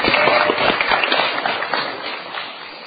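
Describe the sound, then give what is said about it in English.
A crowd applauds the musicians after their song, steadily: a dense, crackling wash of many hands clapping at once that holds fairly loud before easing off slightly toward the end. “You can clap louder than that.”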